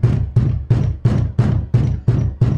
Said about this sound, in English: comes silently up to the front door and knocks on the front door.